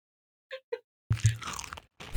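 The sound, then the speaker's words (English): Loud crunching of a crisp chip being chewed by a man eating, a dense burst of crackly bites lasting under a second, preceded by two brief tonal squeaks and followed by another crunch. “He's eating right now.”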